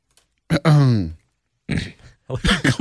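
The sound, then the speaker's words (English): A loud throat clearing: one long rumbling, voiced rasp, then a couple of shorter, gruffer hacks after a brief pause, with no words spoken. “I just cleared my throat.”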